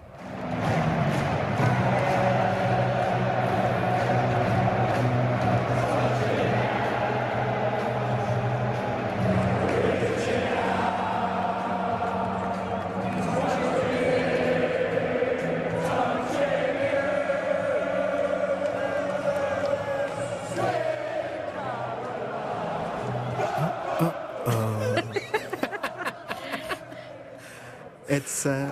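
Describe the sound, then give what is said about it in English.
A huge football crowd at Wembley Stadium sings a song together in unison, loud and continuous, with the massed voices echoing across a wide open space and occasional shouts rising above the chant. “It's a fun song to as a crowd to sing, and I think I've heard it in Australian crowds as well.”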